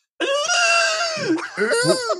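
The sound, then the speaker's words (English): A voice imitates whale song as heard on a childhood record of classical music with whale songs in it: a loud, sustained, bleating tone that holds steady, dips low, then wavers and rises again in a drawn-out, mournful cry. “All of a sudden in the middle of it, you just hear.”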